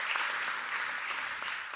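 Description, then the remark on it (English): An audience applauds the Lord in steady, dense applause, a continuous bright patter of many hands that holds at an even loudness without fading. “Well, let's give an applause and hand to the Lord.”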